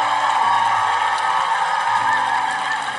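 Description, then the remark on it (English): A church audience claps and cheers loudly for Jesus during a service, a dense, steady wash of applause mixed with high whoops and shouts that holds for the full three seconds without pause. No one speaks over it. “Give Jesus a mega hand clap offering.”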